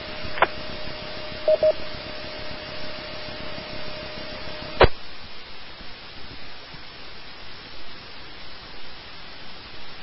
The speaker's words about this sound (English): And there was a weak station in there which I think had a Hotel Bravo in it. You were in the noise. Can you try again?